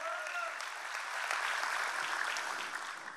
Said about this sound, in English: And our family at SCI Chester in partnership with God Behind Bars. Let's show them some love. Clap for them.